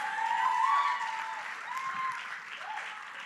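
An audience claps in a dense, steady patter of applause that holds for several seconds and eases slightly toward the end, with faint voices or cheers rising above it.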